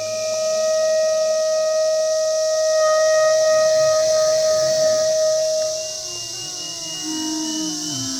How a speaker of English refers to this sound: Okay, so this is a live performance, live in the field, of me and my son and millions of cicadas playing live. I'm playing clarinet, he's playing an iPad